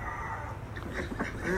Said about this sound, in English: Our ducks are clamoring for some food.